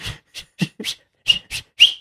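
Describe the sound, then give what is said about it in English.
A person vocally imitates tennis shoes squeaking as they pivot on a court, making about seven quick, high-pitched squeaky chirps in an uneven rhythm, fairly loud with short gaps between them. “No, it's like the little shoes. Tennis.”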